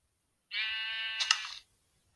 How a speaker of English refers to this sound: Sheep, sheep, sheep. Oh, I'm so happy.